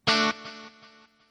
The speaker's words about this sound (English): And this is actually a dual delay. There's an eighth note delay, and there's also a quarter note delay.